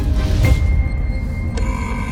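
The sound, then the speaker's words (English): A heavy mechanical door lock engages with a grinding creak, a short burst near the start and a sharper metallic click and whine later, over a steady low rumble, with no voices. “And speaking of Daleks, that's the door locked.”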